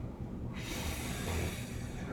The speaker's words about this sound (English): Gonna blow your nose?